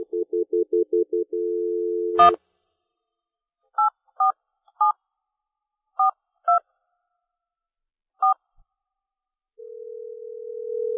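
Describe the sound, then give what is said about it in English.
A phone line stutters with pulsing tones and a steady dial tone, clicks, then seven touch-tone digit beeps are dialed at an uneven pace before a steady ringing tone begins, as a call is placed to Cameron Silver, a software engineer at Williams Bally. No one speaks. “And let's give him a ring up right now on the phone.”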